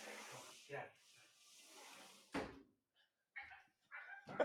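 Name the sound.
dogs yapping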